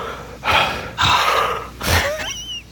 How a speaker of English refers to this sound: I like his breathing technique.